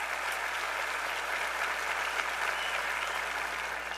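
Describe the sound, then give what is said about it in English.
A crowd applauds two gentlemen steadily, a dense wash of many hands clapping at an even, fairly loud level for the whole stretch, with no voices rising above it. “Give these two gentlemen a round of applause.”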